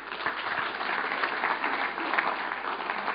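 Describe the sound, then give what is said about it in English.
Steady applause from a group, a dense patter of many hands clapping at an even level for a few seconds with no break or swell. “Round of applause.”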